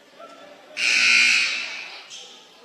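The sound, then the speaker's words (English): A referee's whistle gives one long, shrill blast of about a second, then a shorter follow-up toot, blown to call a blocking foul on Jersey Karki. Both cut through soft, murmuring crowd noise. “And now Jersey Karki going to be whistled for a blocking foul.”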